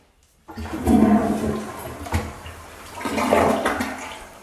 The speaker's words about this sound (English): Hold on, y'all. I'm going to flush the toilet and done.